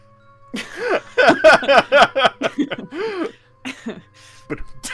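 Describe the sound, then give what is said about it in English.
A fairly loud run of voiced coughing and throat-clearing bursts, clustered quickly together, then a brief pause before a couple more short coughs near the end. “It's a simple yes or no, or cough or don't cough.”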